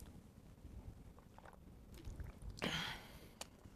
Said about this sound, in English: Let me take a sip of my water real quick.